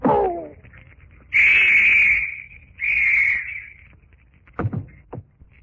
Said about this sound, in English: The whistle will summon others.